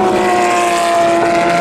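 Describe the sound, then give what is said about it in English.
Race car engines roar loudly and continuously as the cars take the Porsche Curves at the Le Mans race, a steady high-pitched mechanical whine layered over broad rushing noise, with no voices. “And I'm just going to borrow one of these chairs for a couple of minutes and let you hear the sound of the world's greatest, hardest race as the cars take the Porsche curves.”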